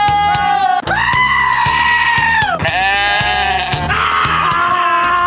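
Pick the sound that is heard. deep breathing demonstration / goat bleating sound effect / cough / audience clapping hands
goat bleating sound effect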